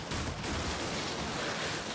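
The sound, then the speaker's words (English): Occasional gunshots about a block away crackle in a dense, steady barrage, the bursts blurring together into a continuous rough rattle with no voices present. “There's the occasional gunshot off down the block or so away that you can hear, but no motorcycles, no cars with fins on them, and you haven't seen anybody randomly explode.”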